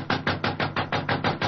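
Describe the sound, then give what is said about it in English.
Rapid, steady knocking on a dressing room door at a theater before curtain time, about nine firm raps in quick even succession, fairly loud and dull-toned, with no voices. “Oh, must be in his dressing room. I'll knock again.”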